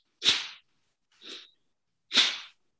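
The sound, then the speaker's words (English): Three sharp, forceful breaths of a bellows-breath breathing exercise, hissy and noisy, spaced about a second apart; the first and last are loud bursts while the middle one is softer. No talking. “So breathing in and out.”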